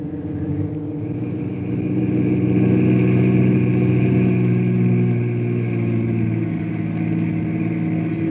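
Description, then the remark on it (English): A car engine hums steadily, rising slightly in intensity before easing off toward the end as the vehicle seems to slow and pull up. No voices are heard. “Fellas, wait in the car. I'll run in and tell Bruce the news.”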